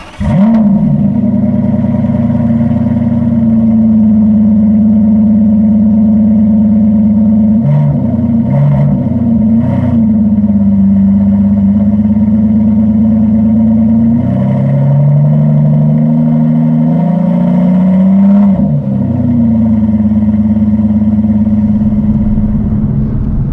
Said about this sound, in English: Being in the company of Aston Martin was quite something, and so is the sound of this car.